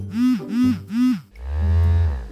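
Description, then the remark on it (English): A custom vibration pattern recorded on an Apple iPhone: three short, rounded buzzes in quick succession, then one longer, lower, steady buzz that drones to the end. No one speaks. “amazing feature that lets you record your own custom buzz variations, like this one.”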